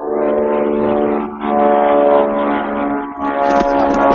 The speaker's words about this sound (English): Does anyone else hear the plane?